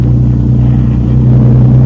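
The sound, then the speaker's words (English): A motorboat engine drones loudly and steadily as the boat is swung around, a deep, throbbing low-pitched rumble that holds constant for the whole couple of seconds with no voices. “You swing the boat around.”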